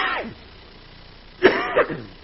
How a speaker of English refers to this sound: It is 8 o'clock and I'm starting to cough.